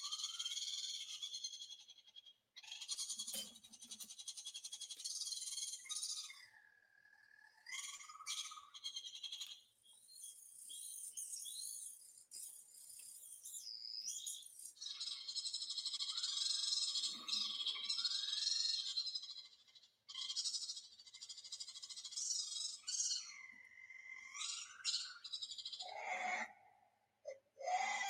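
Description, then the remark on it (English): A reconstructed call of Compsognathus, a small feathered dinosaur: a continuous stream of high, bird-like chirps, trills and swooping squeaks, fairly loud, with no talking. “And they sound kind of like, I don't want to say chickens, but they got that little like chirp.”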